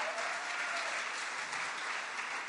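A crowd claps steadily, a dense, even wash of many hands applauding together at moderate volume, sustained without a break and with no voices over it.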